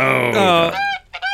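A goose honks loudly three times in quick succession, harsh nasal calls with the first drawn out longest and the last two shorter, separated by a brief gap. No one speaks.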